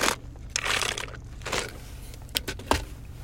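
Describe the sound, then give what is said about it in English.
A quiet sip from a drink, with a few soft slurping and wet squishing bursts and small clicks of a cup being handled, no talking. “Let me take a sip because my throat is dry.”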